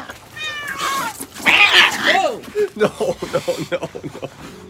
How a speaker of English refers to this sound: Oh my God, the cats are fighting.